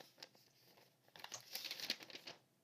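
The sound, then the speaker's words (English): A paper calendar bought at Walmart crinkles and rustles, starting soft and growing into a busier burst of crisp crackling as it is unfolded, with no voices. “A mysterious paper I have no idea about.”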